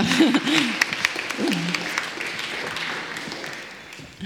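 An audience applauds with dense, steady clapping that lasts several seconds. A few voices call out over it at the start, and the clapping tapers off slightly toward the end.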